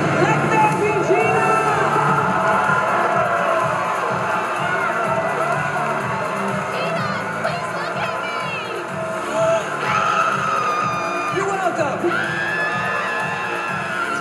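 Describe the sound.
A large crowd cheers and shouts continuously, a dense roar of voices with whoops and high-pitched yells rising above it, loud and sustained throughout.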